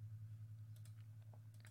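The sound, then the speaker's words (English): A handful of small, quick computer mouse clicks in an irregular cluster, soft, over a steady low electrical hum, while picking a Spieth versus Kisner golf matchup in a database; no one speaks. “Oops, I'm so bad at clicking.”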